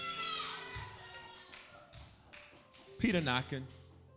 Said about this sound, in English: Peter knocking at the door. And they in the house having their moment.